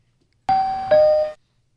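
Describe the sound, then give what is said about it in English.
A two-note doorbell chimes loudly, a higher ding followed by a lower dong, each tone ringing out clearly before cutting off, with no voices. “Guy answers the door.”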